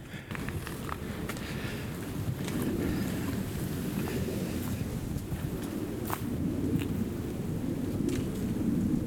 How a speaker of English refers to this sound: Man. My mind just playing tricks on me out here. I'm hearing all kinds of things, but it is mostly leaves falling. Jet flying way overhead.